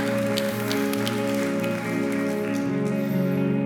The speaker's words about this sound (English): Yeah, you can clap. That's okay. That's a good point to clap.